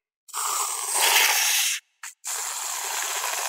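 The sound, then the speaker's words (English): A loud hissing spray from an aerosol can of whipped cream being piled on top of hot chocolate, one long burst of about a second and a half, a quick short puff, then another steady spray. “Whipped cream! Piled on top of hot chocolate!”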